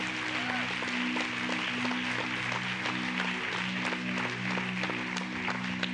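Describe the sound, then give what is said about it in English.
A church audience claps steadily in a dense, continuous wash of applause lasting several seconds, with a sustained low organ-like tone humming underneath. “If you're going to clap, you ought to clap about that.”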